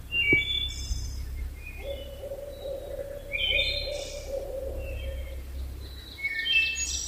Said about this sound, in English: The barred owl calling off in the distance here in Savage River State Forest in Western Maryland. It's about 6:15.